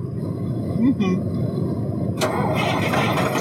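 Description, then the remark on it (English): A bus engine cranks with a steady, grinding low rumble that never catches because the bus is out of gas, and a harsher, brighter burst of cranking cuts in partway through. A faint voice sounds briefly early on. “The bus is out of gas.”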